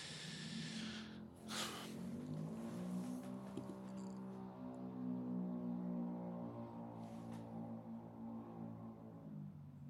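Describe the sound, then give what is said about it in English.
A small motorized bike, a bicycle with a motor hooked onto it, whines and revs outdoors, its buzzing pitch climbing and sagging steadily for the full stretch at moderate loudness, with no voices over it. “I think that's one of those fucking stupid scooter bikes.”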